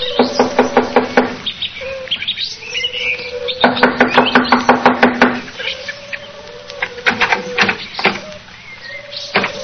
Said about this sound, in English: Here we are. I'll knock on the door.